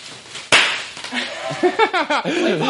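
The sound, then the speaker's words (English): One sharp, loud pop from a bubble of bubble wrap, followed by voices talking and laughing with quick, bouncing pitch. “Can I pop this? Can I pop bubble wrap?”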